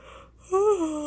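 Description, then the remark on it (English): A person yawns early in the morning: a single drawn-out yawn, starting with a breathy intake and rising into a voiced, slightly wavering groan that slowly trails off. Fairly loud, with no talking. “Sorry for yawning so much, guys.”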